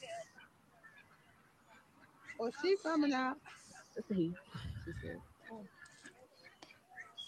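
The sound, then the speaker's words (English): A pet duck quacks and honks in a few loud, raspy bursts as it is released back into the wild near other ducks, with a person speaking softly before and between the calls. “That's a, that duck eat good, baby.”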